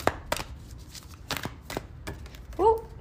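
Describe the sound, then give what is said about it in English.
A gratitude oracle card deck being shuffled, a series of crisp, irregular slaps and flicks spread over a few seconds, followed at the end by a short vocal sound. “Do you guys like the sound of me shuffling?”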